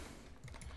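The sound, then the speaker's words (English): A short burst of quiet computer keyboard typing, several soft rapid clicks with no voices, over a low background hum, as someone types to look up the name of a game. “And I know that it was going to involve me typing, so I didn't want to...”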